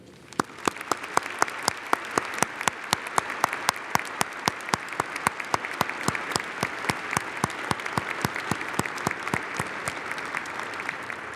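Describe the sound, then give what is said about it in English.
A crowd applauds steadily for students, many hands clapping in a dense, continuous wash with sharp individual claps standing out on top, holding an even loudness throughout without any voices. “Please join with me now in setting the pattern to invite the Spirit as we give a round of applause to these wonderful students.”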